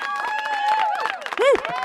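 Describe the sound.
A crowd hollers and cheers, with many overlapping voices whooping and shouting at once. One rising-and-falling yell stands out near the end, over a steady, loud wash of noise.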